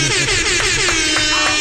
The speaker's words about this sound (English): Can we make some noise real quick? We can clap it up. Get some air horns in this motherfucker.